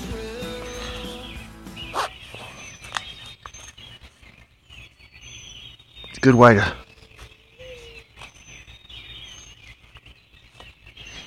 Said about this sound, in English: Can you hear the birds?